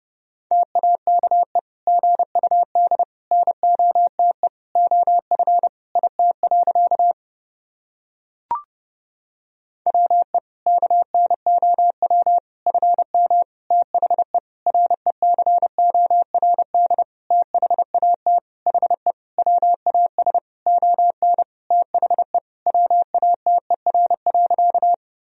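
A single steady mid-pitched tone keys on and off in rapid dots and dashes, sending Morse code at 30 words per minute, sentences built from the top 500 words and abbreviations, with one short break partway through and no voices.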